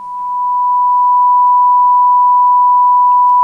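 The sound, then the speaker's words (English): A steady, pure single-frequency sine tone holds at one pitch for the whole stretch, fading in gently at the start and then staying loud and unwavering, with faint low rumble beneath. “If we were to represent our Heavenly Father, His qualities, His attributes, His thoughts and His actions as a sound wave with a single frequency, we would hear a pure tone.”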